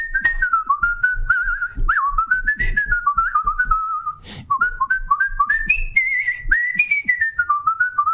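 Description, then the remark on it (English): A person whistles a bright, bouncy Mickey Mouse cartoon theme tune like in the shorts, the melody hopping between short and held notes for several seconds, clear with no talking. “See, anyway, I was gonna do my Mickey Mouse whistle.”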